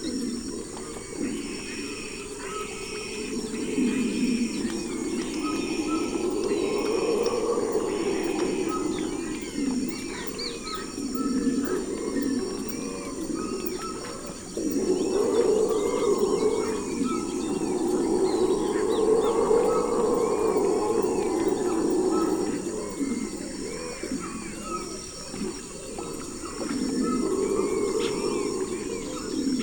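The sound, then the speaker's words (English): A troop of howler monkeys roars in deep, rolling waves from the nearby rainforest, swelling and fading, while a dense mix of rainforest birds chirps and whistles continuously above them. “As we round a bend, a troop of howler monkeys sound off from the nearby rainforest, accompanied by quite an array of bird songs.”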